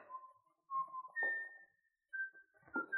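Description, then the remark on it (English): A person whistles a slow, steady tune of sustained pure notes stepping upward in pitch, clear, with a few soft muffled knocks beneath some of the notes. “It's the killer. It's the whistling killer.”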